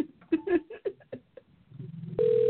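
Muffled voices talk briefly, then a loud, steady electronic phone tone switches on near the end as an outgoing phone call starts to ring, cut off after a fraction of a second.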